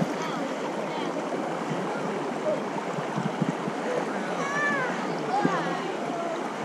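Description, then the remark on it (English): Shallow, clear water of the Mississippi River at its headwaters by Lake Itasca, where the river is a narrow stream, rushes and burbles steadily over stones, a dense continuous wash with faint, indistinct voices and a few high chirps surfacing briefly underneath. “Here it's more like a stream, and some of the areas that we've crossed over coming here are really narrow.”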